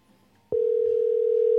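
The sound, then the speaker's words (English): A phone ringing tone on an outgoing call to Johnny D's Barbershop cuts in sharply after a brief near-silent moment, a loud, steady electronic hum that holds unbroken to the end, with no voices. “They froze the phone.”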